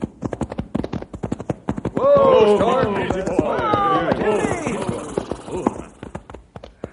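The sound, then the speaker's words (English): Horses' hooves clip-clop in a steady, brisk rhythm from start to finish as riders head out to a canyon, with a voice sounding over the hoofbeats through the middle stretch. “Fellas, let's saddle up and go out to the canyon and do our own sleuthing.”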